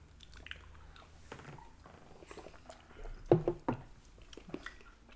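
Someone drinks a shot of El Dorado rum cream, with a few quick, wet gulping and swallowing sounds clustered together, surrounded by soft mouth noises and a faint hum; no one speaks.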